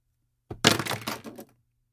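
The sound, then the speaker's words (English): A handful of pens, thrown into the air, clatter down onto a hard surface in a quick burst of sharp plastic clicks and rattles, lasting about a second with a few scattered bounces trailing off at the end. “Here, I will joyously throw these pens in the air in celebration.”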